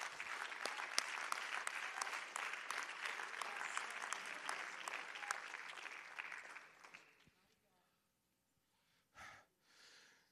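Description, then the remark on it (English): A crowd claps their hands to the Lord together in a dense, steady burst of applause for about seven seconds before it quickly dies away, leaving near silence and a brief breathy sound at the end. “Oh, why don't we clap our hands to the Lord right now and love him?”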